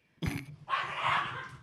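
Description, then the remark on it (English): A dog gives a sharp bark followed by a longer, rough growling bark, fairly loud, with no one talking. “I don't want that dog.”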